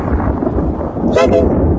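A loud thunder crash sound effect: a dense, heavy rumble filling the whole moment, with a sharper crackling burst near the end.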